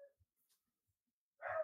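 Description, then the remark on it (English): A dog lets out a single loud bark after a stretch of near silence, preceded by a faint clipped yelp at the very start. “Whoa, somebody's dog.”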